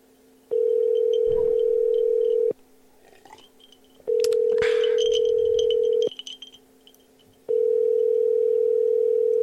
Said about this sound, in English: So let's dial it up. It's ringing.